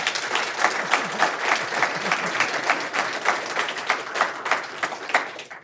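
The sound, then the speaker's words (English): A debate audience claps steadily for several seconds in answer to a closing question, a dense, even patter of many hands with no voices standing out and no letup. “Okay, and the last question is, despite the fact that very few of you changed your minds, did any of you hear anything that will go into your thinking about the issue that maybe you hadn't included before, just by a round of applause?”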